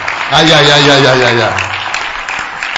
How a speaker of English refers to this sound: I think by now you should be clapping your hands for Jesus. Those who are understanding, you are the ones clapping properly.